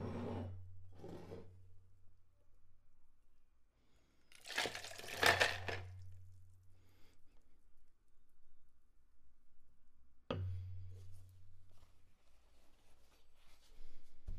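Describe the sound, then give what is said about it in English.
Ice and water are dumped out of a martini glass in one brief, loud burst of rattling and splashing, with faint clinks and handling noises before and after. “Okay, so now we're going to dump the ice and water out of the martini glass.”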